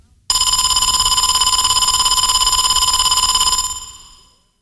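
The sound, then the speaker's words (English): A loud electric school bell rings continuously for about three seconds with a bright, rapid metallic clatter, signalling that school is over, then fades out; no one speaks. “The bell rang a whole minute ago and you didn't even notice. School is over.”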